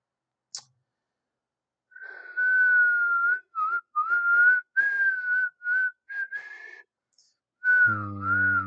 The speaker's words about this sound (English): I finally figured out how to whistle again. It's really weird.